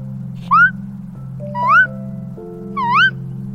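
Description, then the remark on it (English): A voice imitates a bird's squeaky chirp three times, each a short, high, upward-sliding squeak spaced about a second apart, over a steady low hum. “Kind of like a squeak and a chirp mixed together.”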